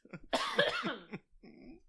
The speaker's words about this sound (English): I'm just going to cough through this segment.